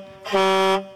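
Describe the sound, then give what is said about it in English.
A single loud blast of a semi truck's air horn, lasting about half a second: a steady, brassy, low-pitched blare with a bright buzzy edge that starts and stops abruptly, with no talking. “Honk, honk.”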